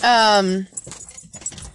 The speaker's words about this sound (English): The dogs are barking. Yeah, they're not barking at anything. They're just barking.